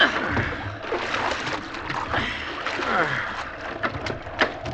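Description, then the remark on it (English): Water sloshes and splashes irregularly around a small boat as it is bailed, with scoops and spills over a steady rush of wind and waves. “If this wind holds and the boat don't swamp, we can't do much else. Bail here, Cook.”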